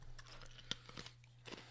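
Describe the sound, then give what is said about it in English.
Someone chews ice: a few sharp, brittle crunches at an irregular pace, with softer grinding between them over a steady low hum. “I probably shouldn't chew ice on the podcast.”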